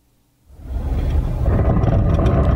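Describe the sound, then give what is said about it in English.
After a brief silence, a loud, harsh, rumbling grind erupts and holds steady: a car's brakes making a monstrous growling noise as they are applied. No one speaks. “That's when I would try and hit the brakes.”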